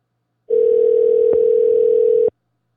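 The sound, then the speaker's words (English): A single steady ringback tone on an outgoing phone call: one unbroken mid-pitched electronic buzz lasting almost two seconds, fairly loud, with silence before and after and no voices. “Okay, I'm calling you right now.”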